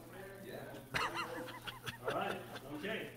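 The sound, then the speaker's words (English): A person wearing a Halloween dog costume mimics a dog with a series of short, yappy barks and whimpers, fairly loud, over a steady low hum of background noise. “now I'm just the dog and she's the dog walking mom.”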